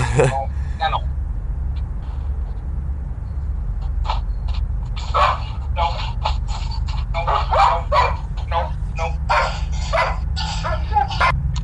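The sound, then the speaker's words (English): German Shepherd guard dogs bark repeatedly in a loose, excited series of sharp yelps and woofs, over a steady low rumble of background noise. “Had his German Shepherds, I guess, in the background.”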